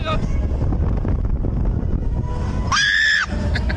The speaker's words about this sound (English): Here's what it sounded like on this slingshot ride. She gets quiet. Yeah, and then she wakes up and screams.